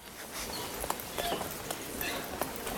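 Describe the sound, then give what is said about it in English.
Squeaky nightingale floorboards chirp under slow footsteps, a string of short, high, bird-like creaks spaced irregularly over a steady background hiss, with no one talking. “And we have a recording of a nightingale floor to listen to.”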